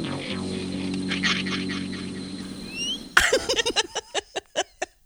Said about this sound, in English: Also, the quack is back.